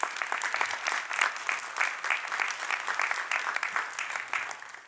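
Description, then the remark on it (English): An audience at an ALPLM event applauds steadily for about five seconds as a historian comes up to give a speech, a dense, even patter of many hands clapping at once, fairly loud throughout and tapering slightly at the end, with no voices standing out. “and you all give him a round of applause as he comes.”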